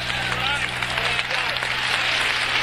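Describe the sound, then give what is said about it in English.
An audience claps hands in a steady, dense wash of applause lasting the whole moment, with scattered voices calling out over it and no single clap standing apart. “Somebody clap your hands under the Lord.”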